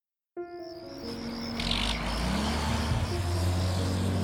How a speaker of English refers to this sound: On a chilly October night in 1997, 35-year-old Wayne Adam Ford drove a cement mixer truck around Eureka, California.